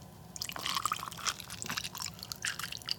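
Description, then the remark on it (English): Whiskey is poured steadily from a bottle into a glass of ice, with bright splashing, gurgling and small crackles and clinks throughout. It's fairly quiet, with no one speaking. “That is probably the best audio recording of a pour I thought I was going to get out of that situation.”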